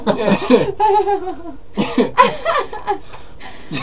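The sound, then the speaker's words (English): A loud, wet sneeze bursts out with a voiced, wavering tail, followed by a few more sharp, sputtering sneeze-like blasts in quick succession, with no speech. “What was that? It was a sneeze, man.”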